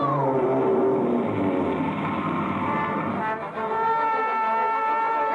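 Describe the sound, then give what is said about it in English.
A whale's enormous sneeze that shoots a raft out like a cannonball: one long, loud, booming blast with a deep, horn-like roar that holds steady for several seconds, with no voices. “I was right outside when that whale sneezed, and that raft shot out like a cannonball.”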